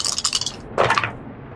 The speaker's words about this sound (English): You roll 3 dice and you take the lower 2.